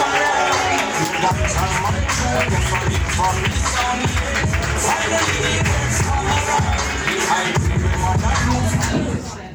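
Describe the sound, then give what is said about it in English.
An audience at a comedy show claps and cheers loudly and steadily for nearly ten seconds as a comedian is introduced on stage, a dense wall of applause with a thumping low beat underneath, fading slightly at the very end. “So please show him some love and clap it up for Mr. Damon Monday, everybody.”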